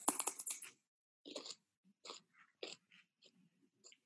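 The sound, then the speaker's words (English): Loud, crisp crunching of raw celery: a sharp snapping bite followed by several irregular chewing crunches with short pauses between them, no talking. “So for those listening, if you don't like the sound of crunching, please turn away and come back in about 20 seconds.”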